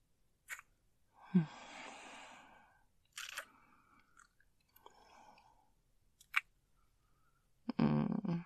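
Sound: slow breathing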